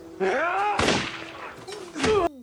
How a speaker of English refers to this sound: There's another gunshot, and so the first one is, I think, Alvaro getting shot, and the second one is Manuel getting shot, mm-hmm. or the other way around. I don't know. Either way, they both shot each other.